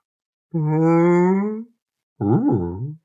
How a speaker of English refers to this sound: This mother is asking her calf to suck a little more lightly, as her whale nipples have become chafed by the salty North Sea waters.